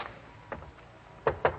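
Knocking on Fran Draper's door: a lighter rap or two, a pause, then three sharper, louder knocks in quick succession, with no voices.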